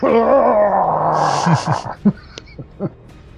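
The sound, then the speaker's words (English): A person lets out a loud, drawn-out roar that drops in pitch, followed by a few short, gruff growling bursts. “So I'm going to roar even louder.”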